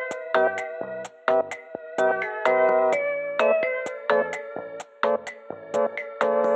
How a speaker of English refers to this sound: I'm getting a phone call from a number I don't know. Do you mind if I hang up and accept it? Because it might be the audio.